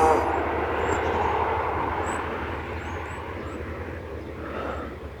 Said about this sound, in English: Looks like so that's the school bus going by.